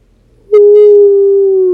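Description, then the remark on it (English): After a brief quiet moment, a child's voice lets out a loud, steady wolf-like howl that holds one sustained pitch to the end, with no other talking. “Can you make a howling sound like a wolf?”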